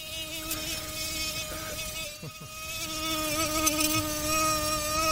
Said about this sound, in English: No more irritating sound, and one mosquito can keep you up all night.